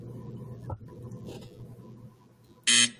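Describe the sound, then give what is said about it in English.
A quiet low hum gives way near the end to a single short, loud, harsh quiz show buzzer blast, lasting about a quarter second and then cut off. “Let me hear that buzzer”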